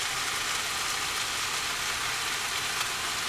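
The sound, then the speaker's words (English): A steady, bright hiss of rice sizzling in hot oil in an uncovered pot on a stove at medium heat, forming the tahdig crust, constant and even throughout with no pauses, and no voices. “And that sizzling that you're hearing right now is the formation of the tadik.”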